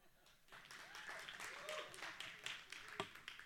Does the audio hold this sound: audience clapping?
yes